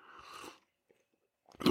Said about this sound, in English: So, hey, we had that milestone. Cheers to that. We'll have a little sip.